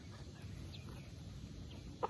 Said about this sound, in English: I have to say, just hanging out with the birds, feeding them little breadcrumbs is the most relaxing thing.